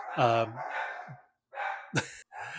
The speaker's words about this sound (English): you hear my dogs? Is that what that was? Yes, I can hear the dogs.